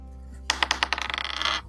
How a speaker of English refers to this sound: Roll your dice.